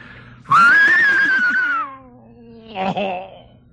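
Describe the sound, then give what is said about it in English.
Mel Blanc imitates an English horse whinny: a loud, high, wavering cry that slides downward in pitch and fades, followed by a short, quieter second burst. “So I didn't say anything, and I waited till it came to that spot, and I did an English horse whinny that sounded like this.”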